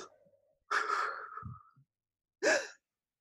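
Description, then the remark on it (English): Someone demonstrates heavy, anxious breathing: a long, shaky breath followed after a pause by a short, sharp gasp, with no talking. “25 minutes of me literally breathing like this.”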